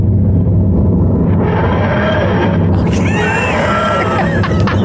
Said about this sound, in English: That's the same fridge sound. Exactly the same fridge sound, just with a little sound effect on it. You just played with it. Okay, right. Put a few more effects on it.